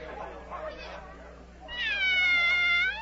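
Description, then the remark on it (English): The Cheshire Cat lets out one long, drawn-out meow, fairly loud, at the queen's croquet game, following a second of soft, muffled voice-like murmur. “Oh, it's the Cheshire Cat.”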